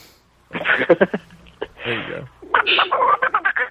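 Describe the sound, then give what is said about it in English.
A person imitates a small monkey, likened to Abu from Disney's Aladdin, with quick, high-pitched chattering squeaks and shrieks, delivered in three rapid bursts with short pauses between them. “That sounds just like Abu. Little known fact, I did the voice of Abu in Disney's Aladdin.”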